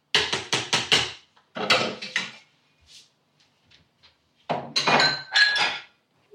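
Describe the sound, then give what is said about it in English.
Dishes clink and clatter as a dishwasher is unloaded: a quick run of sharp ceramic knocks, then another burst, a pause with faint taps, and a final louder cluster of ringing glassy clinks. “Dishwasher is actually full and I've got to unstack it before I can restack it.”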